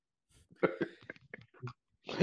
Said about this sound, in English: Hold on now. Don't do the COVID cough now. Wait a minute.